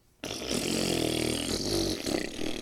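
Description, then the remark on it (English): A long, loud, rasping fart let rip by a man who turns his back, starting abruptly and blaring steadily for over two seconds, its buzzy low pitch wavering slightly before cutting off, with no voices over it. “The wealthy brother turned his back and let rip.”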